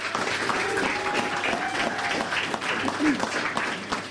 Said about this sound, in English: So can we have a round of applause for our brilliant guests and experimenters tonight, please?